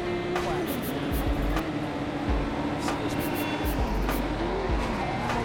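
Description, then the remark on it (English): A video game car engine drones steadily with pitch shifts as it accelerates, broken by repeated screeching tire skids and brief thumps, all loud with no talking. “Oh, geez, this car sucks.”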